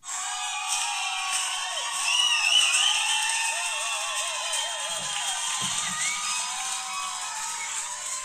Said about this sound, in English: What the fuck was that? That was our audience applauding us. That was the cheapest shit I've ever heard.